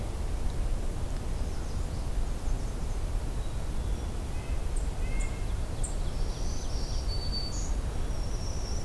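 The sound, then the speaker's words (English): A black-throated green warbler sings thin, buzzy high phrases, faint against a steady wash of background noise, with the song repeating in the second half. “There's both songs that look black-throated green warbler, both common songs at least. There they are again.”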